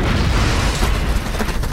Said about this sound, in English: At Chicka Boom Boom, all of our chickens were diagnosed with clinical depression, so everyone agrees. We're doing them a favor by putting them in a giant enclosure and blowing them up.